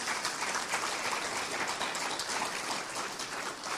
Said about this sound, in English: I'm so excited about our young people. Would you give our young people a hand clap?